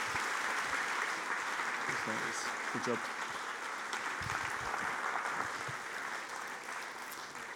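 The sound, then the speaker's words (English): Steady, dense applause from an audience for people heading back to their seats fills the whole clip, a continuous crackle of many hands clapping, with a brief spoken remark rising over it partway through. “Let's give them a round of applause as they head back to their seats.”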